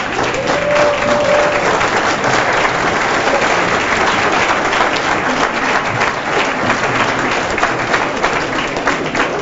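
audience applause

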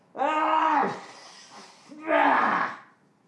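sneeze

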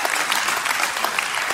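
audience applause

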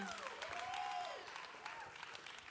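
audience applause

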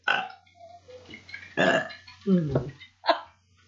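a person burping

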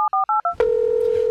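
telephone number being dialed

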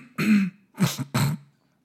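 throat clearing

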